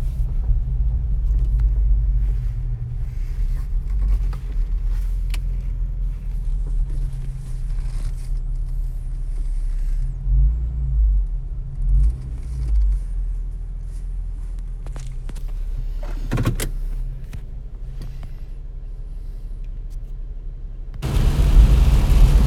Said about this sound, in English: You can probably hear the rain on my windshield. Got a nice little lightning storm coming through.